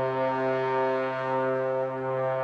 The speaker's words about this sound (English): Is that a foghorn? It was a tenor trombone. Sounded like a foghorn. It was not. I don't think that had the desired effect. I mean, it was roughly right. It was like womp. That's close. It's close. It just womped a little longer than I meant for it to